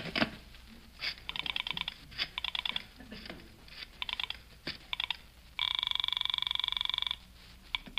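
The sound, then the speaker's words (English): A telephone is dialed to call the Palm Springs Police Station: a run of short, clicky touch-tone beeps in quick bursts, then a steady ringing tone lasting over a second, clear with no voices. “I knew I'd need all the police help I could get on this case, so I went to the phone.”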